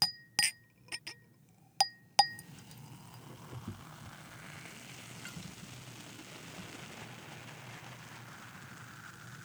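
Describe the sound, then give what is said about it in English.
A few sharp glass clinks ring out, then a steady, soft crackling fizz of champagne bubbling in a glass filled so the foam rises to the rim without spilling over, continuing with no talking. “You got that foam to go up there, but not over the edge. And then you've got these bubblies.”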